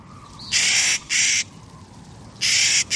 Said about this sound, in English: Clark's nutcracker, named for the famous Western explorer William Clark, is one of nature's indispensable tree planters.